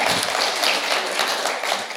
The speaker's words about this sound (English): No warning, my lovely wife, would you like to come up here? Come on, round of applause, round of applause.